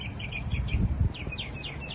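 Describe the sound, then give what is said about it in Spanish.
Small birds sing in a steady series of short, bright chirps and trills, repeating rhythmically over a low rumbling outdoor background. “Escucha a los pajaritos cantando, contentos.”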